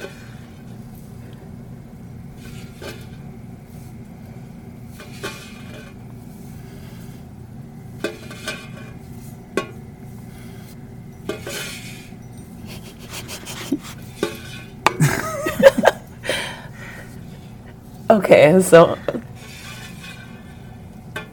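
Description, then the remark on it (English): Milk squirts into a bucket in irregular short hissing bursts, a few seconds apart, as a cow is milked by hand, with louder, longer streams near the end, over a steady low hum and a brief spoken word. “how do you like milking a cow?”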